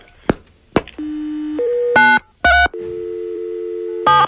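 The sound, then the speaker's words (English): A phone line hums with steady dial tones, broken by short bursts of touch-tone keypad beeps and a couple of sharp clicks as a number is punched in. No one speaks. “We're calling up somebody.”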